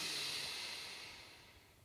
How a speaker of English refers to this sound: Take a breath in through your nose, breathing in. And breathing out nice and slowly. And then take a breath in through your nose.